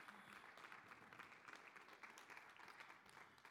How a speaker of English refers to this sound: All right, so hey, let's clap it up for those who led us in worship today. We're thankful for that.